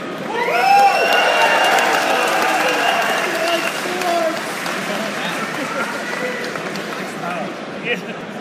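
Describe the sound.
A crowd bursts into applause and cheering for the Lion Clan, loud at first with whoops and shouted voices over steady clapping, then gradually settling into a softer, sustained clapping that tapers off.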